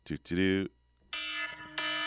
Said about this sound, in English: Let me see if I can make it go off. That's just like shrieking. That's a shrieking kind of noise.